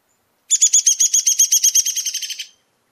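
A downy woodpecker's rattling call: a quick run of about twenty high, clear notes lasting two seconds, fairly loud, gradually fading and dropping slightly in pitch toward the end, with nothing else audible.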